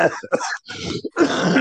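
A man coughs, a loud series of rough throat sounds like coughing mixed with throat clearing, coming in several quick bursts with brief pauses between them.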